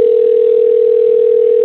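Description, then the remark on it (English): A steady telephone dial tone of an outgoing call to Gene Kranz's phone number hums continuously at an even, loud level, one unbroken low-pitched note with no other sounds around it. “I called the number and someone picked up.”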